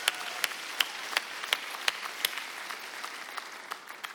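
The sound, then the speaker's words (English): An audience claps together in a steady, rhythmic beat over a constant hiss of crowd noise; the unified claps grow softer and less regular toward the end. No one speaks. “Let's put our hands together and cheer.”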